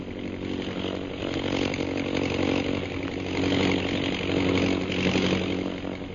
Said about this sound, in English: Holbrook has located our men. He is circling over them. You see his plane? Yes, sir. He's to your right. Keep low.